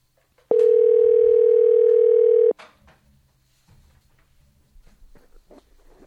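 A steady, loud single-pitch telephone tone sounds for about two seconds while a call is placed to a radio show listener, then cuts off abruptly, leaving faint low rumble and soft scattered noises.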